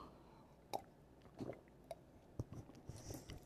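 Quiet sipping of coffee: a handful of soft slurps and swallowing clicks spaced irregularly over a few seconds, with no one speaking.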